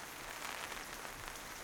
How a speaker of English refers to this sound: The canvas, pitter-pattering with rain, turns into a kaleidoscope of color.